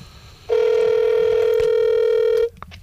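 A single loud ringback tone from an outgoing phone call placed live on air, one steady electronic burst lasting about two seconds before cutting off, with no voices.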